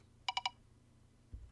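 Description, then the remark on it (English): An online decision wheel on wheeldecide.com gives three quick, evenly spaced electronic beeps, bright and tonal, followed by a brief low thump against a quiet background. “Ooh, I heard it beep.”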